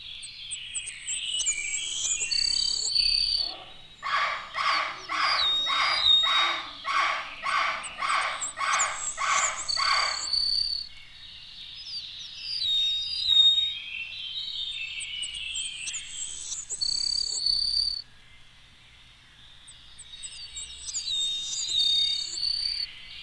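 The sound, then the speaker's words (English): A savannah sparrow sings thin, high songs that include two short trills on different pitches, and an eastern meadowlark joins in: clear slurred whistles and buzzy trills repeat, with a rapid pulsing buzz in the middle stretch and a steady low background hum. “An eastern meadowlark joins the savannah.”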